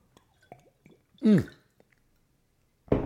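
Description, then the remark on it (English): Sipping of water: a few soft wet clicks, then one loud gulping slurp, and after a brief pause another wet sip begins. No one speaks. “Water. I'm loving water.”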